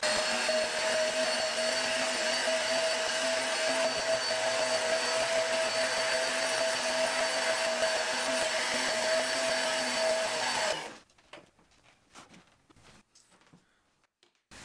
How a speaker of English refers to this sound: And in order to illustrate it, I'm going to conduct an experiment in this room, which I purposely didn't vacuum for a couple of weeks, so hopefully this will work. I'm going to vacuum this room for the first time now.